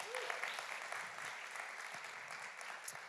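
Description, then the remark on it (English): Steady applause from a crowd for the existing volunteers who have served for a long time. A dense continuous patter of many hands clapping at even loudness lasts a few seconds, with no voices standing out. “So please give them a round of applause too.”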